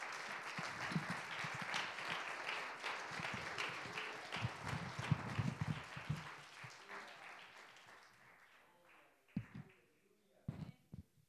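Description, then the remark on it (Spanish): A crowd claps together as a clap offering to the Lord, in a dense, sustained burst of applause, gradually fading out after about eight seconds, with a few scattered claps and voices at the end. “Please stand, den un aplauso al Señor. Give a clap offering to the Lord.”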